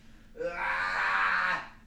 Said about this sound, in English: Do you hear the love behind that scream?